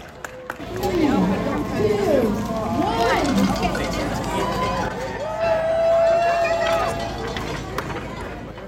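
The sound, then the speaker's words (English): Outdoor burro (donkey) race in the small town of Superior, Arizona. A herd of 27 donkeys sets off at an ambling pace with runners, while a lively crowd chatters, calls out and cheers continuously amid steady, fairly loud background commotion. “That is the sound of burro racing.”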